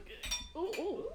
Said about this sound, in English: Before we go any further, let's cheers. Yeah. Cheers.